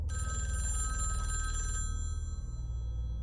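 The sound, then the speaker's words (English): A telephone rings at an ice cream store late at night in Canada in early March, with a bright, steady electronic trill that holds for nearly two seconds, then cuts off, leaving a low hum in the background. “I got a phone call.”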